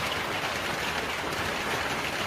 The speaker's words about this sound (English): Look, listen, if I saw this hailstorm in the UK, I'm hiding, you know. This is like bullets.